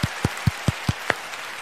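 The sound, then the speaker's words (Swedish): A single person claps their hands six times in a quick, even rhythm, each clap sharp and moderately loud, followed by a short quiet pause with no talking. “För jag ska klappa.”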